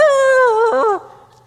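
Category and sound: bird, rooster crowing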